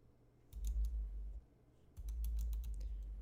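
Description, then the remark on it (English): Rapid clicky typing on a Razer mechanical keyboard in two quick bursts, each a flurry of sharp keystrokes with a short pause between them and no one talking. “It's one of the, I have one of those Razer keyboards, and it does that little clicky noise.”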